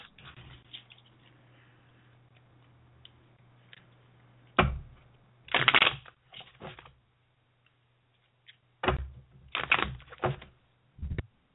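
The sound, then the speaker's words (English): Tarot cards being shuffled by a tarot reader in several short, crisp riffling bursts separated by quiet pauses, fairly loud over a faint steady hum, with no talking. “My mic while I was shuffling there, but there's that little awkward pause when tarot readers start shuffling away.”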